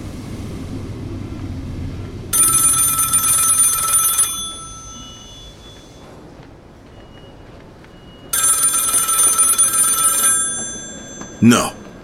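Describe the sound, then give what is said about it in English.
A telephone bell rings in two long, loud bursts separated by a pause of a few seconds, over a low background rumble, followed by a brief sharp click near the end. “Ring, damn you, ring.”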